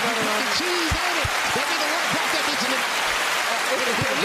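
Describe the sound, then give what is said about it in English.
Steady applause from an audience, a dense wash of clapping throughout, with voices calling out and chattering over it. “Clap it up for him.”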